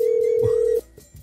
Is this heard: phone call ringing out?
yes